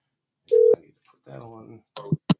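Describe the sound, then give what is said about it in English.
A short, loud electronic telephone tone sounds once, followed by a brief stretch of a voice and then a couple of sharp clicks, as a call to a listener is placed. “So, all right, so let's get the first one on the phone.”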